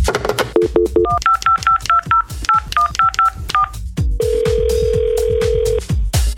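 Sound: telephone dialing tones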